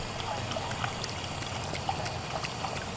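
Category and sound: household object, water poured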